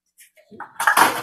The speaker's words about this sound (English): And now I'm setting the measuring cups in the sink.